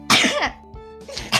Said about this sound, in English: Ow! Oh, my God. It was like a cough and a sneeze at the same time. Ow!